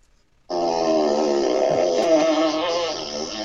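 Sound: fart sound effect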